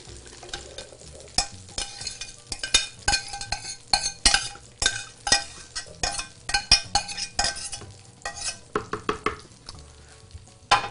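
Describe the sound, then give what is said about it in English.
Spoon scrapes and clinks against a pan as thick corn ragu is scooped and transferred into a blender, with steady sizzling underneath. Repeated scraping strokes, no voices. “So now that our corn ragu is just about ready to blend, I'm going to transfer this right into the blender.”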